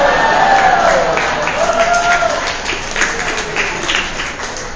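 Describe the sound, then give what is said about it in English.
A church crowd at Coastal, South Beach applauds at the end of a sermon with dense, steady clapping, mixed with cheers and a few high whoops rising above the noise. The applause stays loud throughout, tapering only slightly toward the end. “I don't need pity applause.”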